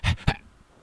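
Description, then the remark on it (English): Someone imitates a dog breathing heavily in a moving car, its front paws between the seats: two quick, loud, breathy huffs, then an abrupt cut to near silence as the dog stops breathing. “And, okay, so we're driving along, and he's breathing heavy, and then all of a sudden he stops breathing.”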